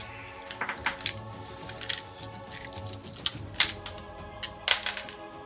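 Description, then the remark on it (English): Two six-sided dice clatter and tumble across a hard tabletop, an irregular run of sharp clicks and knocks that comes in bursts for several seconds, with no one speaking. “I need 2d6, please. Just a moment. Oh, never mind. There's dice behind me.”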